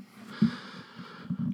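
A long, breathy yawn: a sustained airy exhale with low, groaning voiced bursts rising in the middle and again toward the end, moderately loud and without any speech.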